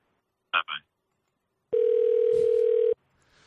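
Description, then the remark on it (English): A loud, steady electronic phone-line tone sounds once for just over a second after a phone call ends, preceded by two brief faint bursts. The line then goes quiet with only low hiss. “Wait, why is it ringing?”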